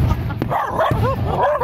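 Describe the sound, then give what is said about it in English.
On the 4th of July, a frightened dog barks and whines in high, wavering yelps as its owner tries to reassure it, while two sharp fireworks bangs crack in the background over a steady low rumble. “This dog owner tries to reassure his scared pooch as fireworks boom.”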